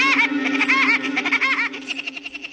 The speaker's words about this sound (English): He doesn't sound exactly like Woody Woodpecker, but this acorn woodpecker was probably the model for the cartoon character.